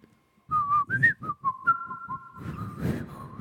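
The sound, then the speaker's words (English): Someone whistles a flute-like melody: a quick run of short, breathy notes rising and falling, then a long held tone, ending in a burst of airy, breathy sound. “that is a spot-on flute.”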